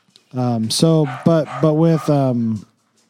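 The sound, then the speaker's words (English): A dog barks in a quick run of about five whiny, yodeling, vocal barks strung together over a couple of seconds, loud and clear with no one talking. “my dog is saying hi.”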